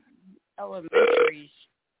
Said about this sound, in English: Bless you.